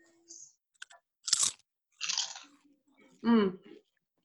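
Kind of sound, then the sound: food or drink, crunching potato chips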